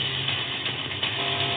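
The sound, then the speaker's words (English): Off-road trophy trucks, led by Abdali Lopez just after the green flag drops, race out into the open desert, their engines a steady, loud, dense roar with a deep rumbling undertone and no pauses or voices. “With the green flag dropped, Abdali Lopez sets the pace as he leads the trophy trucks out into the open desert.”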